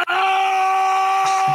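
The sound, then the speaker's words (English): A sustained, high-pitched scream rings out loudly and steadily for over a second, holding a strong tonal pitch before wavering slightly near the end. “The scream of I definitely prefer hearing one over the other.”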